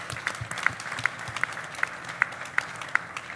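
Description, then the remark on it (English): An audience applauds steadily, a dense wash of clapping with one sharper, evenly spaced clap cutting through roughly every third of a second. No one speaks. “Yeah, maybe I'll make one quick point about it after the applause.”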